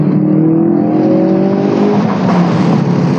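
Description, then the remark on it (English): A Ford Focus RS hatchback's engine revs hard, its rising drone steady and loud for a few seconds with a rough, crackly edge of exhaust pops, and no one speaking. “We Pop And Crack In A Ford Focus RS”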